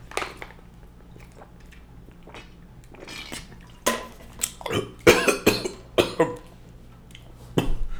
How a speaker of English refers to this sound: So I apologize. I got choked up drinking my water.